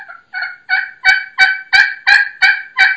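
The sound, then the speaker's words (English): A Primos Crystal 'The Freak' slate pot call sounds a quick, even series of about nine sharp, loud turkey clucks, each note building slightly in strength, with no voices. “You can cluck on it.”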